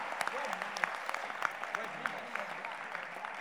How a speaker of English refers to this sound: Look, clap your hands to encourage yourself.